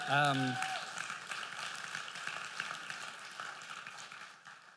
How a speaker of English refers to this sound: But, oh yeah, you can clap for that. That's good.